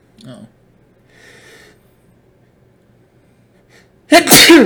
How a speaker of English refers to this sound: And I kept waiting outside. I had to sneeze.